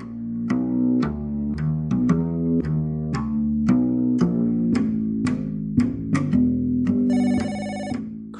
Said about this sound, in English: I've had 3 hours sleep and my mobile is ringing. What kind of arsehole calls up at 7 a.m. on a Saturday?